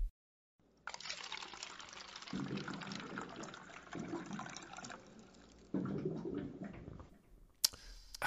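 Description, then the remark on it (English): Water pours steadily into a container, as from a water cooler, a continuous splashing gush with gurgling bursts that swell and ebb, ending with a brief sharp click. No one speaks. “Okay, how's about this week's water cooler facts?”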